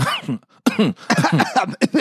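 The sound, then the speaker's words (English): A fairly loud run of coughing, several rough bursts in quick succession with a short pause early on, then more hacking through to the end. “We should definitely include more coughing in this episode.”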